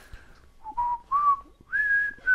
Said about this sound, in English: I'm just going to whistle the song that everyone who hears this podcast has heard 50 times by now.